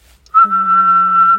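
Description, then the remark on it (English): A person whistles a single held note, about a second long, loud and clear with a slight wavering vibrato, and no talking alongside it. “I can whistle. I can even do the whistle with the vibrations.”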